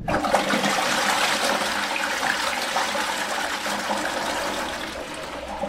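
A toilet flushes with a loud, steady rush of water that fills the whole clip, fading slightly toward the end as the tank drains, with no talking.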